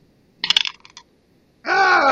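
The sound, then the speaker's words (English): A twenty-sided die rolled for a strength check clatters across a hard surface and bounces off a tray rim in a quick burst of sharp clicks and rattles lasting about half a second, followed by a short silence and then a loud voice. “It bounced. It was going to be a 20, but it bounced off of the rim of the...”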